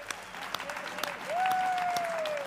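An audience at a revival tent in Listerland claps for Jesus together in a dense, steady burst of applause, while a single sustained musical tone slides up and holds beneath the clapping for its second half.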